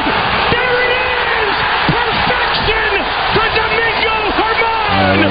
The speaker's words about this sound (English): Oakland fans cheering against their team.